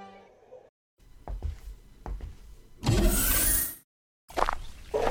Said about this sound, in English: Now crack the door a bit.